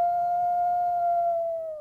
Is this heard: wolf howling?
yes